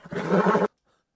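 A single loud horse whinny, a brief harmonic neigh lasting just over half a second, then abrupt silence. It stands alone, with no talking.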